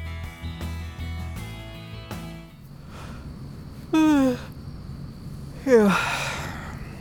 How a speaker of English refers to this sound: That's some good audio right there. Me yawning, sitting on this bench. It's 4:35 in beautiful downtown Madison. It's very quiet here.